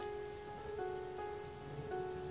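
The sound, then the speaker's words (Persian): Steady rain patters continuously on a hard surface, a dense even hiss with no pauses, while a faint sustained tonal hum lingers underneath throughout. “بارون میومد، خاک ها رو از همه جا شد.”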